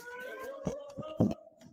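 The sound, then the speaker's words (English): A school alarm drones steadily overhead at a fairly low level as police officers rush from classroom to classroom, holding an unbroken electronic tone while a few short thumps and knocks break in, the loudest near the end. “They rush classroom to classroom trying to find the attacker while an alarm wails overhead.”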